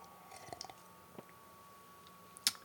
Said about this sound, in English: Oh, I need a sip of beer. It's medicinal right now. This isn't for my pleasure. It's medicinal.